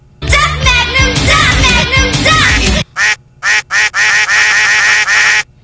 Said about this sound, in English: I can go wild with the duck.